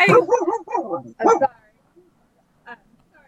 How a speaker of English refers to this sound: I'm sorry. There's a dog around.